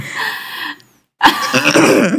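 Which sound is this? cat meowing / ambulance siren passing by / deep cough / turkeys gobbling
deep cough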